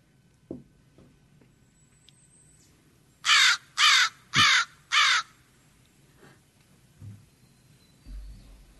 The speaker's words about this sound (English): All right. That's an easy one. Yeah. I think I want to guess, but then if I'm wrong, I'm going to look dumb. It sounds like a crow. It is a crow. Yay! An American crow. Yeah. Yeah. Which are probably one of the more intelligent birds.